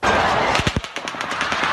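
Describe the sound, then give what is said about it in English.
A rapid burst of automatic gunfire as bullets rained down on the Route 91 Harvest Music Festival in Las Vegas: a quick string of sharp, loud cracks fired in fast succession, followed by fainter, irregular pops over a constant hiss of background noise. “As bullets rained down on the Route 91 Harvest Music Festival in Las Vegas”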